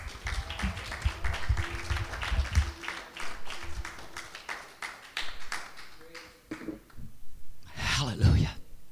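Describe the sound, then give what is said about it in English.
A church audience claps hands together during a sermon in a steady, rhythmic beat for several seconds, with a low sustained tone beneath, then the clapping thins out as a voice calls out loudly near the end. “Come on, clap your hands.”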